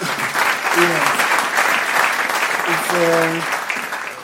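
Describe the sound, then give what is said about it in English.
A steady round of applause, dense clapping from many hands that holds at an even, fairly loud level throughout, with a couple of brief voiced calls rising over it. “and we want to thank the mothers, maybe we should give them a round of applause.”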